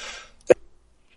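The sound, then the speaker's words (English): A single sharp sneeze bursts out after a breathy, hissing intake, short and abrupt, with quiet afterward and no talking. “Oh, I'm going to sneeze like a motherfucker.”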